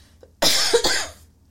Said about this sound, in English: COVID. No, that is the lingering cough.